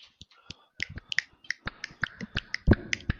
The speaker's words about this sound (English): I'm sorry, I'm sorry about that. That was my mandible jaw just clicking.